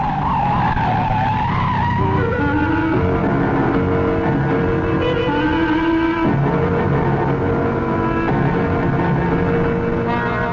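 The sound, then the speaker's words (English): Tires shriek in a long, loud skid as a car races through a red light in the radio mystery drama Human Error, the squealing tones sliding and shifting in pitch over a roaring engine for about ten seconds, with no voices. “Harry, the light's changing. I can make it. No, you can't, Harry. It's red.”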